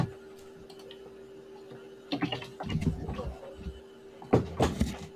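A room door is opened to let a cat out: a few sharp latch clicks and knocks in two short bursts over a steady low electrical hum, with no one speaking.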